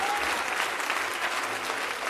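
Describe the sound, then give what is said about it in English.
An audience at a church service claps their hands to honor the pastor and bishop, in a steady, dense wash of applause that fills the space at a constant loud level, with faint crowd noise underneath and no distinct individual claps standing out. “If you love them, would you get loud and clap your hands?”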